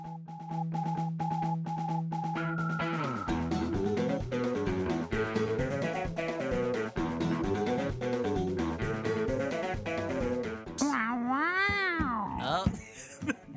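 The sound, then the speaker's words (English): A person imitates a cat, producing a long string of drawn-out, wavering meows and yowls, loud, ending in a few sharp rising-and-falling cries. “No, I wanted to do the cat thing.”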